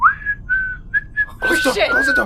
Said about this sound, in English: You hear a door open, and you hear … patented whistle.